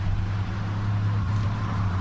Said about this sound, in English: But we noticed that did y'all hear there was something driving by? I didn't hear.